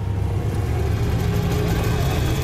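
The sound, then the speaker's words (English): A Chevy Silverado pickup truck pulls up on a property, its engine rumbling steadily at idle, a continuous low drone with a slight throb, holding at a constant level throughout with no voices. “Pulling up his fucking stupid ass truck.”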